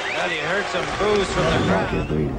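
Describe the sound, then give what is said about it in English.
A boxing crowd boos after the referee stops the contest, many voices overlapping in long, wavering low-pitched tones that rise and fall together, holding at a steady, fairly loud level for the whole stretch. “Well, you heard some booze from the crowd.”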